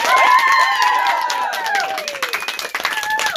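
A crowd applauds steadily with dense, overlapping clapping, mixed with high whoops and cheers that rise and fall over it, loud throughout and tapering slightly toward the end.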